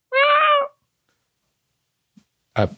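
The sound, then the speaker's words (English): A single clear meow from a living, small, malnourished cat on a fire escape outside a window: a steady tonal call of about half a second, followed by quiet and then a brief, rough noise near the end. “but not the familiar, samey electronic meow that you've always heard. This one seems more, well, alive.”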